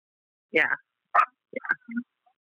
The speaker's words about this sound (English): Yeah, my dog complains so much when he's not next to me. Your dog? Yeah, he complains so much when he's not right next to me.